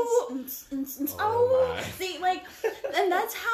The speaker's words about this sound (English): Oh, and my baby dog is crying right now. That's right. I'm like, oh, yes. Hit it, baby dog. Hit it, baby dog.